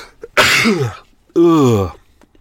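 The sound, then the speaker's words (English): A person sneezes twice in quick succession: first a loud, breathy burst with a falling voiced tone, then a second, more tonal sneeze that fades out, both standing alone without talk. “I'm going to sneeze.”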